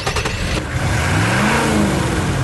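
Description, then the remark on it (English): A 2015 Nissan Titan pickup truck's massive 317-horsepower V8 engine revs up loud, its deep growl climbing steadily in pitch over a couple of seconds, with a few sharp clicks at the start and no voices. “It's our biggest, baddest, most capable pickup truck that sports a beefy 317 horsepower from a massive V8 engine, complete with a one-ton payload and up to a hardcore 9,500 pounds of towing capability”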